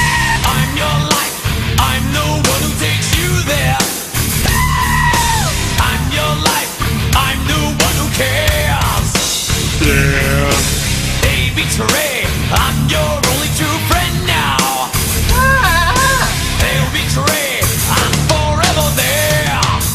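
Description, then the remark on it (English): Goats scream and bleat in loud, wavering cries over a dense, driving rock track with a steady heavy beat playing from an old jukebox, recurring every few seconds throughout. “That's goats.”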